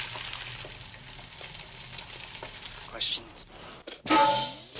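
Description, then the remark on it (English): Steady crackling sizzle of eggs frying in a pan, fairly quiet, swelling into a louder hiss and pop near the end. “Looks like a frying pan and some eggs to me.”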